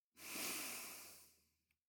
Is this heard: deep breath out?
yes